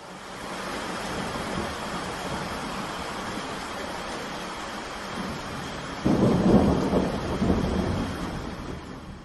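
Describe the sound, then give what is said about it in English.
A steady wash of heavy rain and wind roars throughout, with a louder rumble of thunder surging in about two-thirds through before slowly easing. No voices are heard. “The kids were scared because there was strong wind and strong rain.”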